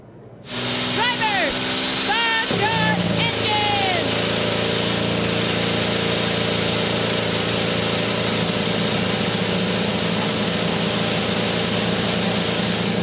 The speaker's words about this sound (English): Seven cars roared alive for the Grand Prix of St. Petersburg